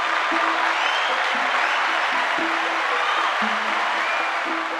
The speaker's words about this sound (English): Our big question this week comes from Caleb J. Let's give Caleb a round of applause.